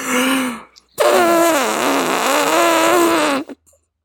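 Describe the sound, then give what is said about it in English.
A voice imitates an elephant's trumpeting with loud, buzzy, brassy blasts: a short one, then a longer wavering call that dips and rises in pitch before cutting off. No talking. “An elephant?”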